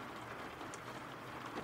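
A steady, soft wash of rainfall, a continuous even hiss with no clear drops standing out and no voices over it.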